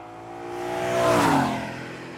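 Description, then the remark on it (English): A BMW V12 race car engine roars past in an IMSA race for late-1990s 24-hour cars, its harmonic whine swelling to a peak around the midpoint and then fading as the pitch bends down. The sound is loud, with no voices. “And up front is the BMW 12-cylinder, remarkable car.”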